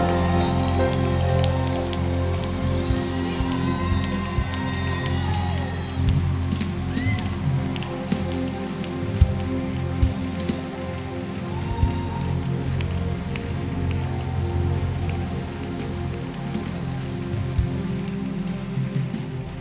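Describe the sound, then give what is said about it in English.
An audience claps their hands in a dense, steady patter that holds at an even loudness for about twenty seconds, with a sustained low musical drone underneath. “I want 10 people who understand this. Clap your hands.”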